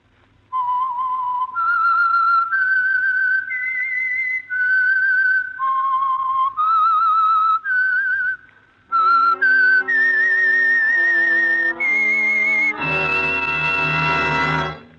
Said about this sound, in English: And for Sunday evening listening pleasure, the signal to listen for is this whistle that identifies the Signal Oil program, The Whistler.